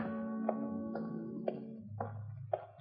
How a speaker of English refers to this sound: There was no sound except my footsteps on the stones.